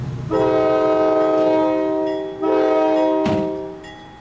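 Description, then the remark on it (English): A MARC commuter train, pulling into West Baltimore MARC station after the ride from Penn Station, sounds its horn in two long, loud blasts, the second cut short by a sharp burst, with a low rail rumble underneath and no voices. “We're getting ready to pull into the station now, so let's go take a look at some of the new improvements at the station.”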